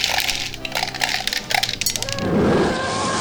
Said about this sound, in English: I had it ready to put into my Staggering Dragon dice tower available on Etsy.